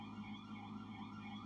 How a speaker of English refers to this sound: The alarm came on. Ring that damn alarm.